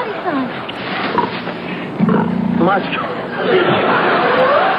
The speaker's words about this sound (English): It's the two of them with like this pig behind them that won't shut up. It just keeps making stupid pig noises and cracking them up. Now this love scene is stolen by a pig with a digestive problem.